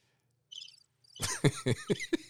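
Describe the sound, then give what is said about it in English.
A brief burst of high, thin cricket chirping, then a quick run of five loud coughs in a steady rhythm. “Crickets.”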